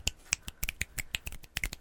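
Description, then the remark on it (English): A quick run of about a dozen finger snaps, each a sharp, crisp click, coming in a slightly uneven rhythm with no talking. “Because I can snap my fingers.”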